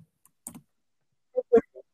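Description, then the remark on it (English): A handful of sharp keyboard clicks in two small bursts, a pair of quick taps then three more after a pause, with no voices. “It's like I'm typing.”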